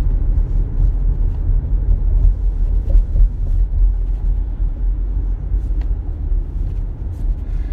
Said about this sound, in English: It's bumper to bumper traffic, and he almost freaking rear ends me.